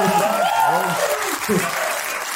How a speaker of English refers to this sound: So how about a round of applause for us on getting this one right?